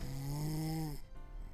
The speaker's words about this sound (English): Just then, Barney turned over and snored like thunder, so loudly it shook the walls.